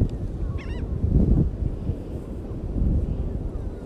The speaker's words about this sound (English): Obviously, I'm at the beach. It's beautiful out. It's 84 degrees. The birds is chirping. Spring has started.